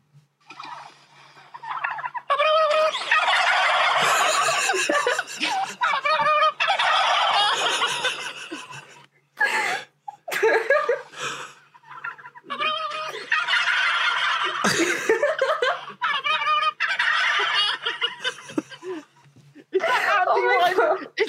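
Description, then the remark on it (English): A flock of turkeys gobbles loudly in repeated bursts as a person winds them up, the rattling calls overlapping into a near-continuous chorus with brief pauses, and faint human chuckling in the background. “I've never seen turkeys get wound up before.”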